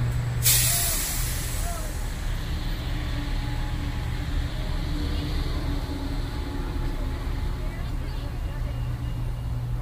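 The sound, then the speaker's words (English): A bus lets out a sharp, loud hiss of air brakes right at the start, followed by a steady, heavy engine rumble that carries on throughout, with faint voices in the background. “Did you see the bus?”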